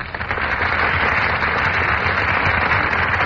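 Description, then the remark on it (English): A studio audience at the Gulf Theater breaks into a burst of applause as Brian Ahern and Joan Fontaine enter the stage, a dense, crackling wash of many hands clapping that holds steady and loud throughout, with no voices heard. “That burst of applause, ladies and gentlemen, is for Brian Ahern and Joan Fontaine, who are just entering our Gulf Theater stage.”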